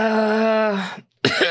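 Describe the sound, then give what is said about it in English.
A person trying out a low raspy voice that coughs a lot makes a drawn-out, buzzing voiced rasp, pauses briefly, then lets out a harsh, noisy cough-like burst, performing a raspy, sickly cough with their voice. “A low raspy voice where you cough a lot?”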